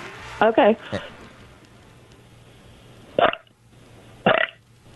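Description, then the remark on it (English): A caller to the Heidi and Frank show lets out a string of short, loud belches: a quick pair near the start, then two more separated by pauses, each a voiced, gurgling burst over a faint low hum. “Could you give us one more Heidi and Frank show belch?”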